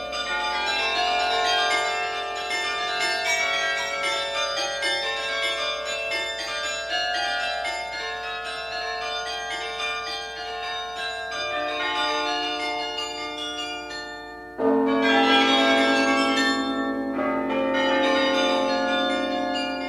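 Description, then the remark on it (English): The chimes of Delft: church bells chime continuously in overlapping, sustained tones, ringing fairly loud with no voices; near the end a brief lull gives way to a fresh, stronger peal. “The Chimes of Delft.”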